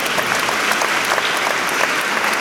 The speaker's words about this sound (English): But he is here with us in spirit. Let's give an applause to Georges Collinet.